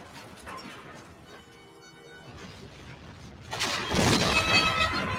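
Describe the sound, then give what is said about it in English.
A cartoon explosion sound effect from an animated series: a thin, wavering whine gives way to a sudden loud, roaring blast full of crackling, shattering debris that rumbles on for about a second. “Animated series explosions! Hell yeah! You gotta love the sound effects, right?”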